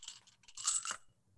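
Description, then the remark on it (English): Dice rattle and clatter briefly across a hard surface, a quick tumble of clicks lasting about a second, with no talking over it, rolled for a dispel magic check in a tabletop role-playing game. “All right, dice.”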